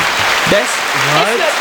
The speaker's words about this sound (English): Hey, yo, give me that round of applause.